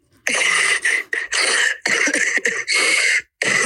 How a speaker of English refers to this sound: You can't just cough.